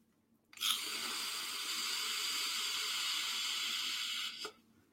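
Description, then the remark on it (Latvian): A vape device set to 30 watts, with its air flow fully open, fires through a long inhale: a steady airy hiss and sizzle that starts abruptly, holds evenly for about four seconds, then cuts off. No one speaks. “Nu, kārtīgs tvaiks. Gaisa padev pilnīgi vaļā.”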